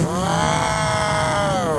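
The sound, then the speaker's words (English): A person imitates an elephant with a loud, sustained, buzzy trumpeting call lasting under two seconds. It is rich in harmonics and its pitch rises slightly, then falls. “Is that what you sound like as an elephant, or excuse me.”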